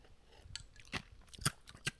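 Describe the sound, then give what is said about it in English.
Crisp crunching of coffee ice being chewed, with several sharp bites in an uneven rhythm over a quiet background and no talking. “I'm chewing coffee ice right here.”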